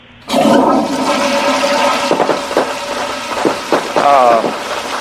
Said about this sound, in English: I flushed fireworks down the toilet.